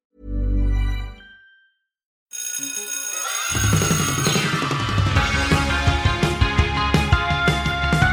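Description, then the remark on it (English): A single loud school bell rings for about a second at 4 o'clock, then fades into a brief silence before upbeat music starts and carries on to the end. “It's 4 o'clock. The bell has rung, so put away your Meccano model of Brum and come join us, thanks, in After School Culture Club.”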